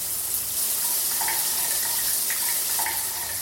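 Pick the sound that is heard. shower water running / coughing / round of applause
shower water running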